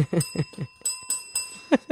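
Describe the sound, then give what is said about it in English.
A bell rings in a quick series of bright, fairly loud dings. A faint steady high tone lingers underneath. After a short pause, one last ding sounds near the end. “you better get that bell ready.”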